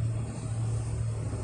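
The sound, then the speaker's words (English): A steady, heavy engine rumble with a deep low-frequency drone from a tractor trailer truck driving in to where the cars go, holding constant without voices. “Yeah, these tractor trailers coming in here to where the cars go.”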